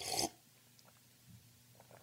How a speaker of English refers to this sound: I'm recording this on a Sunday morning, and I have in my possession my traditional cup of English breakfast tea, and I'm finding myself already a bit parched with all the acrimony. And so I need to take a sip of my English breakfast tea. Do hold.